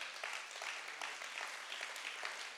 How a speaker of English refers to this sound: I want to honor every parent who brought their children to church today. Come on, let's give those parents a great clap.